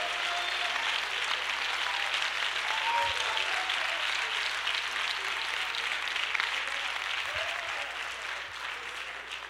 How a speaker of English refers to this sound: Clap your hands and give the Lord praise.